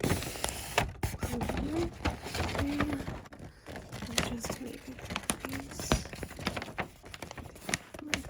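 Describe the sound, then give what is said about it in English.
Steady crinkling and rustling of wrapping paper being folded and creased, with irregular crisp crackles throughout and a voice murmuring faintly underneath at times. “Fold it all the way right here.”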